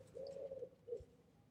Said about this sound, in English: There's a little pigeon right here. Is he going to be a featured guest right now?